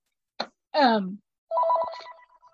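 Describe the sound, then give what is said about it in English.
A work desk telephone rings at the speaker's workplace with a rapid electronic warbling trill, loud, after a couple of brief vocal sounds. “Sorry, I'm at work, so that's my work phone.”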